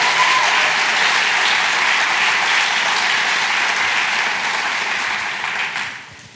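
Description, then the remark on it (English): A crowd claps in a steady, dense wash of applause that holds strong for about five seconds, then tapers off and fades out. No one speaks over it. It is a round of applause at a morning service for the volunteers and leaders who work with students. “And can we just give them one more round of applause this morning?”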